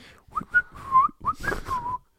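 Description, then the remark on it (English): Someone whistles a short, lilting tune: a quick run of clear notes with sliding pitch bends, breathy and moderately loud, lasting about two seconds before falling silent. “They have to whistle while they work”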